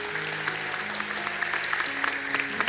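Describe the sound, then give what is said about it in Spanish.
An audience applauds steadily as a round of applause to the Lord, dense overlapping claps filling the space for a few seconds, with a faint sustained tone humming underneath. “Un aplauso al Señor, amén.”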